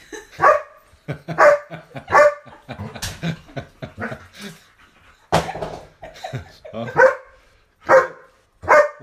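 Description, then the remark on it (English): A white dog named Luna barks loudly, a string of sharp, irregular barks with a few higher yips and whiny sounds mixed in, filling the whole stretch with no talking. “Yeah, our lives still been hijacked by crazy white wolf.”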